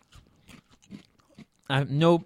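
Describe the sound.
Crisp crunching of dry maple and brown sugar Cap'n Crunch cereal being chewed, several irregular crackly bites, followed by a loud voiced sound from someone at the end.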